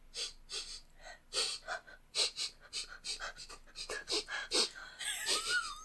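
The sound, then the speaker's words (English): Cartoon baby dinosaurs sniffing: a quick run of short, breathy inhales repeating several times a second, loud and airy, ending with a thin squeaky whine over the last sniffs. “they sniff. That was sniffing.”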